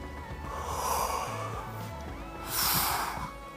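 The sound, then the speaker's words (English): A sneeze: a breathy, nasal intake builds up, then a loud, hissing burst of air explodes about midway, fading quickly. No one speaks. “I know someone sneezed.”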